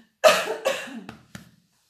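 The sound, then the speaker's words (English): Someone clears their throat with a couple of strong, raspy coughs, then two shorter, quieter huffs trailing off, with no talking. “I'm just going to clear my throat.”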